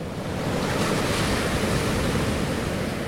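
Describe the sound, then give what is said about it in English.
Powerful Pacific Ocean surf roars continuously against the Washington State coast, a dense, steady wash of big whitecaps crashing in, with a windy rush layered over it. Loud, with no voices. “Big whitecaps crashing in and sea stacks behind.”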